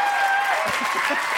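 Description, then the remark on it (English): A crowd applauding steadily, dense clapping filling the whole moment at a fairly loud, even level, with a faint murmur of voices mixed in. “I like that applause.”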